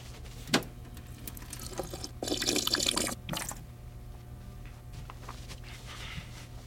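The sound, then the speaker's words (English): Water runs briefly from a tap into a glass for about a second as someone gets a drink of water, bracketed by a few sharp clinks and drips, against a steady low hum with no one talking. “We'll spend a couple minutes while I go get a drink of water.”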